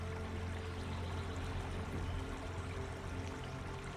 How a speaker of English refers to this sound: You might feel your rib cage expand and contract naturally with each breath, just like the gentle rise and fall of the ocean waves that surround you here.